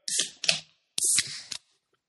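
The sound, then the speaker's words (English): A beer can is cracked open: a couple of short scraping bursts, then a sharp pop and a loud fizzing spray of about half a second, ending in a brief splash. “And if you have left it out for a while and got it a little bit warm, it will spray more.”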